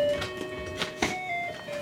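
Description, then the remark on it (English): An electronic musical doorbell plays the traditional Jewish folk song Hava Nagila as a simple tinny melody, its bright sustained notes shifting in pitch at a steady pace, with light clicks and rustling underneath. “Her doorbell plays Hava Nagila.”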